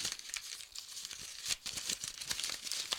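Paper being crumpled, a dense run of crisp crackles and crinkles with sharp bursts of rustling, steady for about three seconds with no talking.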